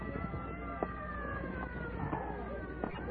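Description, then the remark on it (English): An approaching ambulance siren wails steadily through a dense wash of street noise, its rising and falling tones holding at a fairly constant, moderately loud level with faint clatter underneath. “All right, clear the way, stand back. Clear the way for the ambulance.”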